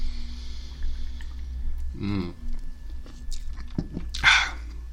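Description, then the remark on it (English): Someone takes a sip of beer: a short, throaty slurp, a few small wet mouth clicks, then a brief breathy hiss, all over a low steady hum with no talking. “I'm going to let you guys listen to me take the sip of beer, because last time I was a jerk.”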